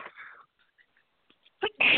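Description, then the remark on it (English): A single sneeze: a few faint, sharp inhaled breaths, then a sudden loud, hissy burst at the very end. No one talks. “God bless you.”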